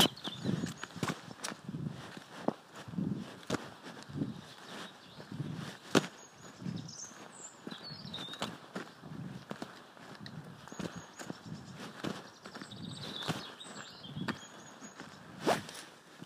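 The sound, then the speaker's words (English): Steady footsteps crunch along at an unhurried walking pace up a lane within an equestrian center at about five to seven in the morning, with soft rustling between steps and faint birdsong twittering in the background. “walking up the lane within the equestrian center to tell my daughter Dudley there's a horse in the arena”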